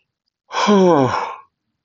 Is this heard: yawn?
yes